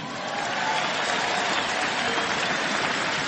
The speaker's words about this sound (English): John Danks getting a nice round of applause here at the ballpark.